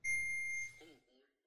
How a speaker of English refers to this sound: Your phone made a sharp ping at the end. What was that? I don't know. What's that ping? Sharp ping.